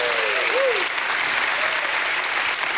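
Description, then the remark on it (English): An audience gives God a hand clap, clapping steadily in a dense, even wash of many hands at constant loudness throughout, with a brief rising vocal whoop near the start. “If God has met your needs and you know God is all powerful, give God a hand clap.”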